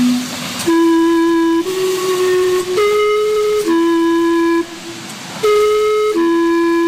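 Steam whistles of an outdoor steam-powered clock on a shopping street in Gastown, Vancouver, play the Westminster Chime on the hour: a slow sequence of sustained, breathy pitched notes, one after another, loud with a hiss between tones and no talking.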